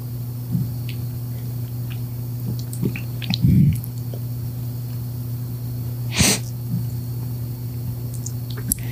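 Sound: people sipping beer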